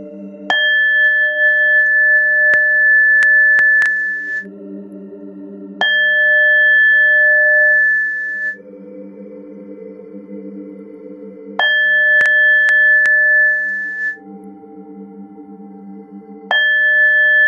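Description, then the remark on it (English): Meditation bowl chimes ring out four times at steady intervals of a few seconds, each bright tone sustaining and fading, over a soft, continuous low drone with no talking. “And now with each chime of the ball, the lotus flower continues its expansion.”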